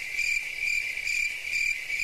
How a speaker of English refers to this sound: You don't have to wait for the sound to end. You can just start talking over the crickets. The crickets are meant to convey an awkward silence, so it actually is fitting with the theme of the crickets to remain silent.